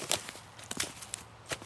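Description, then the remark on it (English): Footsteps crunch through dry fallen leaves in a deciduous forest in autumn, in an uneven rhythm, each step a brittle, crackling burst, with a few softer rustles between them. “The quiet in the trees and the sound of leaves crunching under your feet.”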